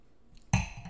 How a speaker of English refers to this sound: So anyway, I'm quickly realizing I'm like 3 or 4 minutes in and I'm like, wait, when I run this solo, how do I take a sip of wine? Because it's just me talking. So I guess I'll break.